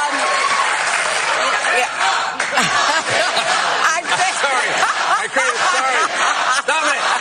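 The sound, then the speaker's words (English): A studio audience on Colbert's show claps and cheers loudly for several seconds, a dense wash of applause with whoops and excited voices rising throughout, as Hillary cackles over a 'lock him up' remark. “Yes, Hillary cackled over that, and the crowd got all lathered up, and Colbert tried to tamp down what he had started, a chant of lock him up.”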